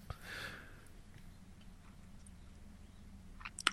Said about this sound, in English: And now I'm gonna take a sip.